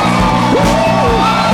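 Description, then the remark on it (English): A large worship audience screams and shouts together for Jesus in a loud, sustained roar, with one voice rising in a long whooping yell above the dense wall of noise. “Can you scream until you lose your voice for Jesus?”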